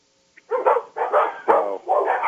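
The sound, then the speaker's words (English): Dogs bark in a quick run of four or so rough, overlapping barks, fairly loud, with no talking over them. “You hear them barking in the background. Yeah. Damn dogs.”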